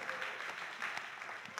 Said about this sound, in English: They did a very good job. Let's give them a round of applause if you're there and saw that.